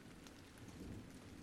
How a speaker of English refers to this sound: It's past midnight, you're drenched, and the storm isn't letting up anytime soon.